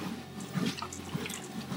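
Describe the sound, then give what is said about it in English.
Someone walking on a treadmill drinks from a water bottle close to the mic, with liquid sloshing and a few soft gulps over a couple of seconds. There is no talking. “Let's get some water into me.”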